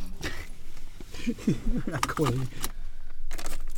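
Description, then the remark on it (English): Keys jangle in several short metallic bursts, with a brief stretch of indistinct talk in the middle and faint rustling between the jingles. “I need the keys, Mom.”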